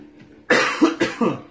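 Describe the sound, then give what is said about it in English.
A quick burst of four harsh coughs in a row, loud, each following fast on the last after a moment of quiet, with no talking. “Still got a little cough.”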